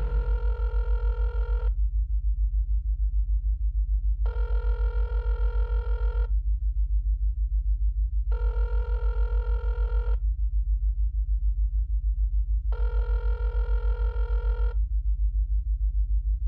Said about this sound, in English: The phone rings 5 times. Come on, please answer, please answer.